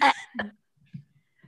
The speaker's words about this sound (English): I'm going to do one now. I'm just going to make one up. Okay. Okay. Christmas themed. Okay. That little tight burp.